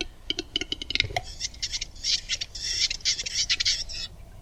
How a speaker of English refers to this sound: Oh man, this looks like a turkey kind of thing. Maybe an airplane in the background. This is a Western Capercaillie, if I'm pronouncing it.